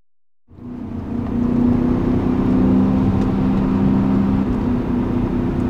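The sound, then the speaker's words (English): After a brief silence, the engine of Malcolm Gladwell's cold silver 2003 BMW M5, driven on the mountain roads of the Hudson Valley, comes in loud, building briefly before settling into a smooth, steady, low droning note that holds throughout with no voices. “That engine, the engine note alone, I could fall asleep to this engine note. It's so smooth and beautiful.”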